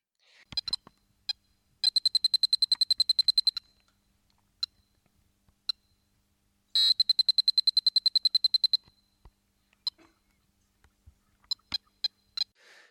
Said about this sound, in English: It replaces the G grace note mentioned above and is also followed immediately by a series of piercing upper octave B beeps and point accrual.